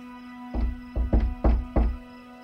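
Five firm knocks on a wooden door in a quick, uneven rat-a-tat-tat rhythm, solid, over a faint steady hum with no voices.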